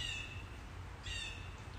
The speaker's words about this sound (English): Do you hear that bird?